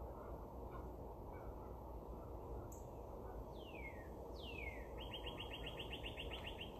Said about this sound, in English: I don't know if you can hear this bird out here. Maybe I'll go to the window here and see if you can hear it, because it's loud.